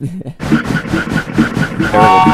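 A loud train chugs in a steady rhythmic pulse, and near the end a horn blares over the clatter. It sounds like a staged sound effect.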